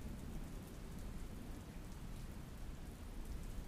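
Steady, heavy rain pours throughout with a deep low rumble underneath, like a thunderstorm. No voices, just a constant wash of rainfall at even loudness.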